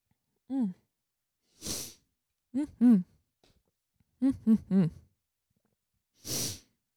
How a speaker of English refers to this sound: Sorry, I have to take a few sips. Feel free to take a drink of your water if you're listening.